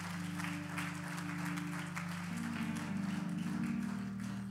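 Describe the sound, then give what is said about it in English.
An audience claps its hands in a steady, dense wash of applause, with sustained low keyboard or organ tones droning underneath and shifting pitch partway through. “If you were there, you ought to clap your hands about what God was able to do in this house.”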